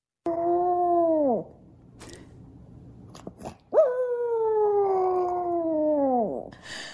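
A dog lets out two long, tuneful howls, loud, each sustained note sliding downward at the end, with a short quiet gap between them.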